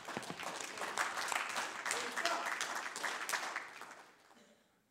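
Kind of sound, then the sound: crowd, audience clapping hands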